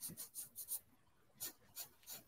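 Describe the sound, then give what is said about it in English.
Quiet, scratchy strokes of a pencil across paper, thickening the branches of a sketched tree, in two rhythmic bursts of about four strokes each separated by a short pause, with no talking. “I might go through some of these branches in the middle and make those thicker as well.”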